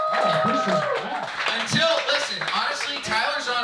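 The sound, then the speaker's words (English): An audience claps for the scorekeeper in a steady, dense wash of applause, with voices and some cheering mixed in throughout, holding at a fairly even loudness for a few seconds. “Yeah, you can clap for Tyler.”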